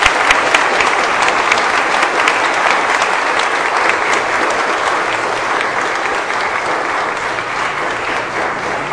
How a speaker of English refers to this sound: But give a round of applause to our organists for the fine job that they've done.